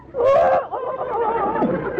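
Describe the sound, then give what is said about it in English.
A man on a beach imitates a chicken as a stunt with a continuous, warbling cackle of about two seconds. His voice wavers up and down in pitch with a brief dip partway through. “Well, I kind of make it like a chicken.”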